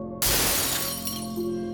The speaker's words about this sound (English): In his fury, he picked up a dining room chair and hurled it at their chandelier, sending shards of glass across the room.